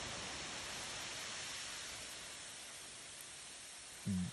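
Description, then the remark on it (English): Steady rain from a storm hisses evenly throughout, a soft, continuous wash of noise, ending with a brief low thump. “The Florida Panhandle has seen some severe storms too, with tornadoes, waterspouts, and hail.”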